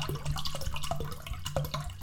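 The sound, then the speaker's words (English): Liquid trickles slowly into a container, a steady wet stream broken by small splashes and gurgles, with no voices over it. “Are you gonna pour slowly more?”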